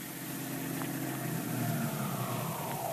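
Dick Tracy's car engine hums steadily, its pitch sliding downward as the car slows to pull up and stop outside the apartment house where Tess Trueheart lives, with no voices present.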